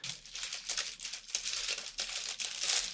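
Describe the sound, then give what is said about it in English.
Continuous crinkling of a tea bag wrapper being crumpled while tea is being made ready, with irregular crackly bursts over a few seconds and no talking. “I thought I heard something crumpling. Is that like a tea bag?”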